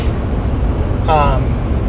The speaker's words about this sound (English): And again, I'm just stream of consciousness because I want to be on the road for the next 6 to 7 hours probably with traffic, because I can tell you the traffic's already heavy right now on 95.